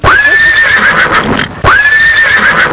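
A horse whinnies loudly, two long shrill neighs in quick succession, with rough, rattling breathy texture and no voices.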